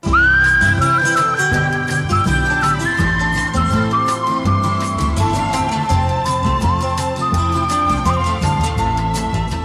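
A whistled melody glides and sustains over a full band with a steady beat and bass, the pure tune riding loudly on top of the accompaniment like a song's opening.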